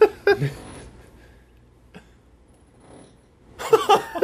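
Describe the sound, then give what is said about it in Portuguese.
An electric drill whirs in two short, rough bursts, one at the very start and a louder, longer one at the end, with near quiet in between. “É, o cara com uma furadeira.”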